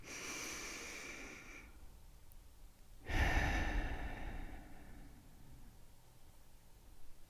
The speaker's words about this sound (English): Take a deep breath in and a deep breath out.